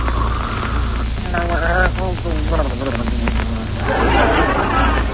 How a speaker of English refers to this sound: Oh, listen to those beautiful pear-shaped snores. He sounds like a frog with a man in his throat.